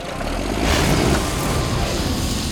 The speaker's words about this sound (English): I'll just hop on the tractor and start her up.